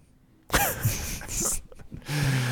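Loud, close breathing pushed right into a microphone, with harsh rushing bursts of air over about two seconds, starting after a short quiet moment and ending in a sustained exhale.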